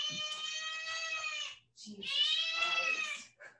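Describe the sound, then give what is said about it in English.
A cat lets out two long, loud yowls, each drawn out for over a second with a brief pause between them, strained and insistent. “I have to appease the cat.”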